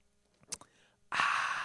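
A brief, quiet slurping sip of water, then after a short pause a loud, breathy exhale that carries on steadily to the end. No one speaks.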